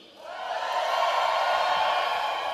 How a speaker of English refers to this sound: Let's do a little bit of a test, because I get around the country a fair bit. If I've been to your church at any point, scream.